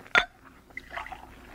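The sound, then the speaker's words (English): A sharp clink of glass, then a short splash of whiskey being poured into a glass, three fingers with no water, fairly quiet, with no one talking. “Three finger will do. Skip the water.”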